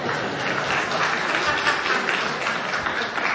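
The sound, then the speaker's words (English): Steady crowd applause, started by one man after the pastor is praised, fills the whole stretch, a dense, even wash of many hands clapping at a fairly loud, constant level with no talking over it. “I love that he started his own clap for that.”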